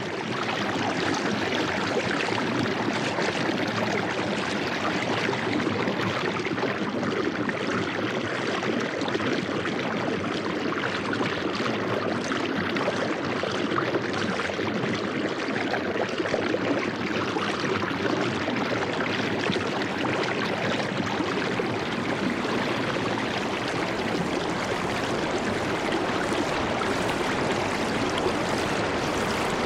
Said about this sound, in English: Andrea Lockwood recorded the cascading waters found at the gorge at Blue Ledge high in the Adirondack Mountains, as part of her work called A Sound Map of the Hudson River.